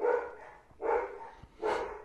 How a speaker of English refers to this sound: You hear the dogs again? On purpose. They're going crazy.